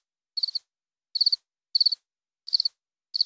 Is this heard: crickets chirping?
yes